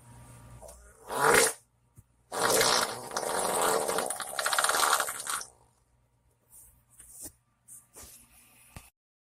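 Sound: fart sound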